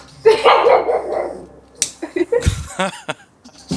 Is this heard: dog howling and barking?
yes